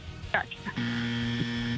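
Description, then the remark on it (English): A brief bit of talking gives way to a game-show buzzer: one loud, steady, low-pitched electric drone held for about a second before cutting off. “We have to get a buzz on that one, please.”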